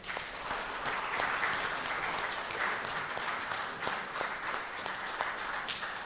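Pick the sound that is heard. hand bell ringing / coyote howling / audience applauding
audience applauding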